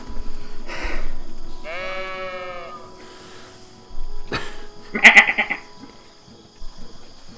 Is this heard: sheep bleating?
yes